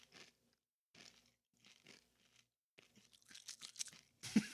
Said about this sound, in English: Sorry for the bag crinkle, but you're going to get some chewy ASMR now. I just deliberately crunched into the mic, so